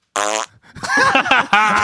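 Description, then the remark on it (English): A loud, buzzy fart blast, then a rougher sputtering stretch and another long reedy fart, all brassy and vibrating with no talking over them. “You got him gassing in here.”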